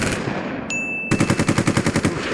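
A BB machine gun fires a fast, steady stream of sharp rattling shots, about ten per second, preceded by a high thin whine that continues beneath the burst.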